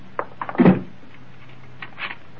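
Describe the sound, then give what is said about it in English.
A door in a house swings shut with a solid thump after a couple of light clicks, followed by quieter metallic clicks and a short rattle as the lock is turned. “You stay here and think it over, realizing that this house is well armed and that your door will, of course, be locked and guarded.”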